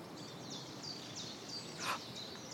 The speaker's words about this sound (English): Can you hear this? There's a couple of mizzle thrushes.